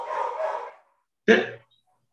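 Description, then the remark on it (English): A dog barks twice, fairly loud: first a longer, rough, drawn-out bark, then after a short pause a single sharp, punchy bark, with no talking. “Oh, that's him barking.”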